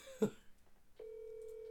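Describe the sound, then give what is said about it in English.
A brief soft knock, then a steady electronic phone tone starts and holds evenly as a phone call to a young woman connects and begins to ring. Nobody speaks. “I'll call her. Answers not.”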